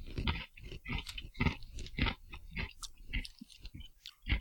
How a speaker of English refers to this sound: Sounds like a pretzel. You're very close. it is covered in chocolate. Chocolate covered pretzel. Yep. Fresh. There's like major crunching during this whole time.